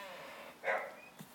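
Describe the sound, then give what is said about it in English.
A single muffled dog bark from out in the hallway, short and fairly faint, followed by a quieter brief noise. There is no talking. “And the dog out in the hallway.”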